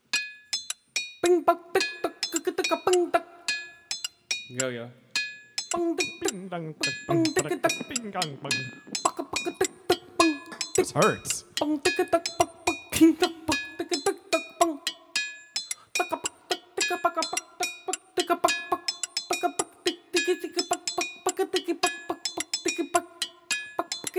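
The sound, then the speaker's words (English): Hammers banged together by three percussionists, two hammers at a time, produce a dense, relentless stream of sharp metallic clinks with bright ringing overtones, steady throughout, with a brief spoken remark partway through. “This is three percussionists.”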